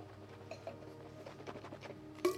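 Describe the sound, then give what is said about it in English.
Someone spits out a mouthful of wine at a wine tasting: one short, wet spurt near the end, following a stretch of faint, quiet patter with no talking. “That's a forward spit.”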